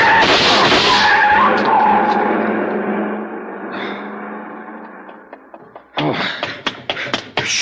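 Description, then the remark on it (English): A long black coupe with a lot of chrome and its lights off peels out with a loud, drawn-out tire squeal that fades as it speeds off, followed by a burst of sharp clattering knocks. “See the car. The one that just gunned out.”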